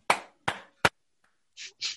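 Hand claps in a musical rhythm: three sharp, loud claps in quick succession, a brief gap, then two softer, breathier claps. No voices.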